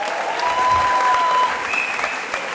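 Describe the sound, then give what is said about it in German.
Steady audience applause as the speaker's wife is invited onto the stage, a dense wash of many hands clapping at a constant loudness, with a couple of faint whistles riding over it and no voices. “und ich darf dir einen Applaus geben.”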